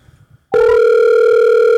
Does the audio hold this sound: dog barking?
no